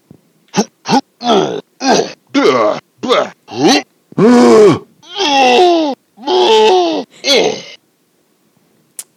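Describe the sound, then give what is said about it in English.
A Donkey Kong video game voice clip: a quick run of about seven short, gruff grunting calls, then four longer, wavering ape-like hoots, loud and alone with no talking. “DK Donkey Kong?”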